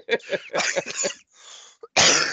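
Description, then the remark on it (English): A person getting over a cold coughs in a rough, hacking fit: several quick bursts, a breathy pause, then one more loud, harsh cough at the end. “I am still getting over my cold, so I will probably cough multiple times.”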